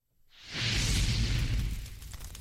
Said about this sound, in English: Nice roaring fire. It's kind of the time of year for it. It is definitely the time of year for campfires.